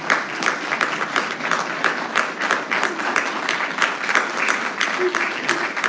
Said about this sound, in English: can I just ask that if you recognize the way in which God has called you to be a mother, if you would just stand and if everybody would give God a hand clap of praise for the mothers who are in our midst.